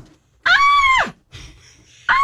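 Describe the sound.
A voice imitates a tennis player's shrill scream-grunt: a loud, high wailing cry lasting over half a second, a softer breathy sound, then the start of another scream at the end.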